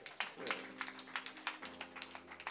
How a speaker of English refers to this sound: Do you love Jesus Christ? Let's clap hands for Jesus Christ.